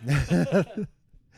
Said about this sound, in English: Sorry. I was yawning and then he followed suit.